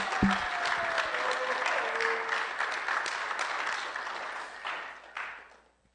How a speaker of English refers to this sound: So here, I guess, what we like to do is we like to clap for them and be really enthusiastic that, you know, they're going to go out. So in 3, 2, 1, let's clap for them, guys.